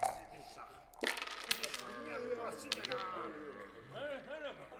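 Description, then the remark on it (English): A twenty-sided die, rolled by a player during a tabletop game, clatters across a tabletop in a quick burst of sharp, tumbling clicks and lands on a 2. It settles within a second or two, while people keep talking over it. “So the larger guy picks a 1d20 and rolls a 2.”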